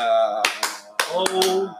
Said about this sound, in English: Golf clap for pulling this out. A hot golf clap. Hot ass golf clap.